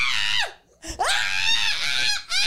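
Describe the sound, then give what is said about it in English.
A voice imitates a woman's frightened scream: two loud, shrill, wavering shrieks with a brief gasp between them, harsh, sliding up and down in pitch. “Yeah, I'd be screaming like the girl who was at.”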